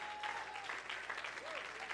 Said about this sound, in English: I need some more to stand to your feet, and let's clap our hands again and shout out to the Lord. Oh, hallelujah. Oh, hallelujah. Go ahead and clap your hands to the Lord today.